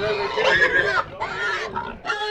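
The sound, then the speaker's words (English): Pigs grunt and squeal in three loud, rough bursts separated by brief pauses, as 21 Magnolia High School students pick out pigs for the 52nd Ham, Bacon, and Egg Show at a 4-H camp in New Martinsville on a warm, clear late-August day. No other sounds compete. “It's a warm, clear day when the 21 students from Magnolia High School participating in the 52nd Ham, Bacon, and Egg Show pick out their pigs.”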